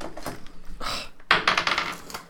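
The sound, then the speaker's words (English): Dice clatter and tumble across a hard tabletop during a tabletop role-playing game in two quick bursts of bright, rattling clicks, each roll coming up a 3; fairly loud, with no talking. “He rolled a 3. You rolled a 3.”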